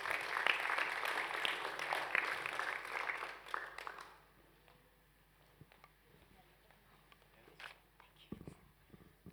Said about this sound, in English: Can we give her a round of applause as she comes up?